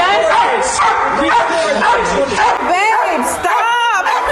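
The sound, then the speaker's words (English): A police dog barks loudly and repeatedly, its sharp barks and yelps tumbling over one another as it is set upon an unarmed man during an arrest, while indistinct human voices shout in the background. “That barking canine dog was set upon a black man who was unarmed, nonviolent, and not resisting arrest.”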